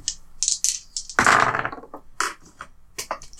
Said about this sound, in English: I dropped the dice. It's all the excitement.